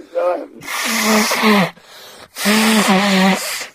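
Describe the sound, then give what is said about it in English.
Someone blows their nose twice in long, forceful bursts, each a loud breathy rush with a honking, slightly wavering tone, after a brief vocal sound at the start. “I've got to blow my nose now, sorry.”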